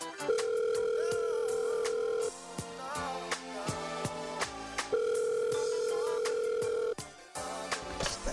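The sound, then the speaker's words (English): A phone ringing tone on an outgoing call sounds twice, each steady electronic buzz lasting about two seconds with a pause between, over faint clicking background noise. “Man, swear, I know you ain't just called my phone crying.”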